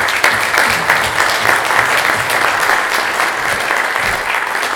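A full round of applause from a crowd, dense and loud clapping that holds steady for several seconds without any voices rising above it.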